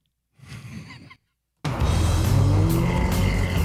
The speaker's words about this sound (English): Let's head out to the desert and see some real Australians with some sick cars. Do a skid, bro. Do a burnout, bro. If only there was some way we could film this car doing sick burnouts from the air.